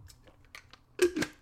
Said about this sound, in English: Little water sipping action.